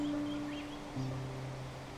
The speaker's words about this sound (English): You can't see it yet, but as you can hear, nearby is a wonderful waterfall that fills this place with the sound of flowing water.